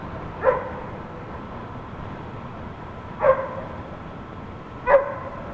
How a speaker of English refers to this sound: We hear a dog barking.